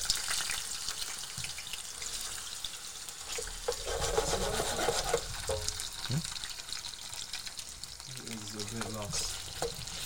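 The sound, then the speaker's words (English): Steady, crackling sizzle of potatoes frying in hot oil for a tortilla, fairly loud throughout, with occasional clinks of stirring and a brief murmur of a voice near the end. “So this is actually the most boring part of doing the tortilla, which is frying the potatoes.”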